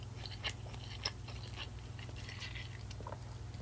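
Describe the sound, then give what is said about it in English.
Someone chews fried rice with soft, wet crunching and smacking, irregular bites repeating over a few seconds. A steady low hum runs underneath, and no one speaks. “Fried rice is the best thing ever.”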